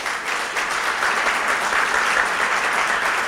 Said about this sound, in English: And so it's with great delight that I get to welcome him back to this stage. And so let's give him a nice round of applause.